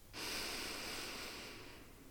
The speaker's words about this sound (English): Please follow along. We start breathing in for 3 seconds.